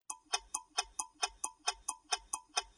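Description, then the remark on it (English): A clock ticks steadily and briskly, about a dozen crisp, bright ticks in quick succession, with no voices. “Clocks tell us what time it is, and we've improved the accuracy of clocks to the point that a strontium atomic clock loses maybe a second only every 15 billion years.”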